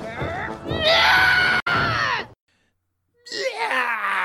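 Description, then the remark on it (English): A loud, excited yelling scream bursts out and holds for about two seconds, then breaks off into silence before a second shorter, strained yell follows. “Like, he just kind of, like, he gets so amped up that he just, like, does a scream.”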